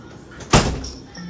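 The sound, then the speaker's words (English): A door is pushed shut and locked, with a single firm thud that rings briefly and fades, leaving quiet ambience with a faint low hum afterward. “Lock the door.”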